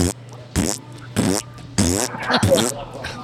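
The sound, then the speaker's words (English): A recording of fart sounds plays: four loud, raspy, buzzing blasts in quick succession, each about half a second long, over a faint steady hum. “Here, I'll load the 10 hours of farts back up.”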